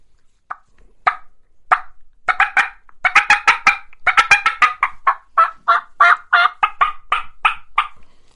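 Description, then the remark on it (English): Turkey hen cutting calls made on a game call: sharp, loud clucks, starting as a few scattered notes, then bursting into a fast, uneven run of excited cuts, with no talking. “So that's when you kind of break out the cuts. I'll give you a little example here.”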